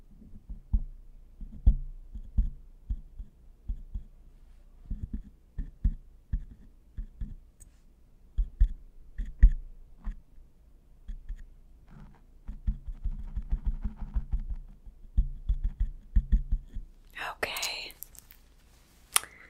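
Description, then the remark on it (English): Soft, muffled low thumps pulse steadily, a heartbeat being checked through a stethoscope, with faint rubbing and clicking around them and a brief crisp rustle near the end. “So, I'm gonna use this and check for a heartbeat.”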